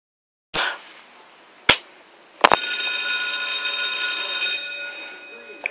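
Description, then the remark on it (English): A couple of sharp knocks, then a bell is struck once and rings out with bright, shimmering overtones that hold steady for about two seconds before fading away. “There is the bell, and we're off and running.”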